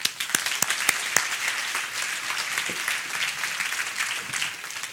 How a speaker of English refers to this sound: Please, a huge round of applause for Matt Perger.